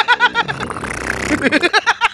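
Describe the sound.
A voice makes a sputtering, buzzy mouth fart noise lasting a second or so, with bursts of laughter-like vocal sounds before and after it.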